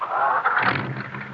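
A car engine cranks over with the key and catches, a whirring starter giving way to a steady low rumble as the motor settles into idle. No one speaks.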